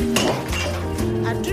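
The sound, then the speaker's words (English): Metal scissors clatter as they drop, giving a few sharp, bright clinks with a lingering high ringing tone between the strikes, fairly loud throughout. “Ça porte malheur de faire tomber des ciseaux.”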